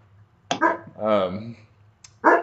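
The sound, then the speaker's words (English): A dog barks in short, sharp bursts, with a drawn-out yowling cry between them and another bark at the end, over a low background hum. “Whoa, now we got dogs barking.”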